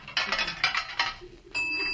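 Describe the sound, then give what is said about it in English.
A car door is opened to let a passenger in: a run of dry, rattling mechanical clicks from the latch and handle, then a sudden steady, bright ringing tone that holds to the end. No one speaks. “Wait a minute, and I'll open the door for you.”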